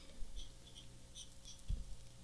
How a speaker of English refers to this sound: She's scribbling. I have a pencil. I'm old school, right?